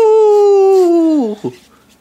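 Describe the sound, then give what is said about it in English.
A person imitates a wolf, letting out one loud, sustained howl that holds steady before sliding downward and breaking off, followed by a brief vocal catch and quiet. “Well, all we're getting is hooting and howling, which is common practice for a wolf, and not so much a stockbroker.”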